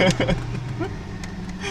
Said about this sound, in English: Well, I gotta turn my car on.